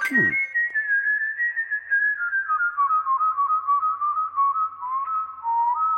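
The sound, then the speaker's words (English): A sustained, melodic whistle holds one wavering tone that slowly drifts lower over several seconds, opening with a quick swooping flourish. It's clear, with no voices. “Here's whistling wren. It says, wow your friends with the melodic whistles of the wilds.”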